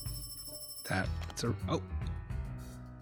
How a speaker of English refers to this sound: Detective Ridd was about to leave his office when suddenly the phone rang.